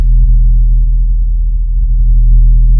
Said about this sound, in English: And so that's the blue whale, its lowest tone is about 17 hertz.